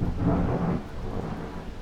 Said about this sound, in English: The heavens are coming right to us this morning. I don't know if you can hear it, but this thunder is rumbling all around me.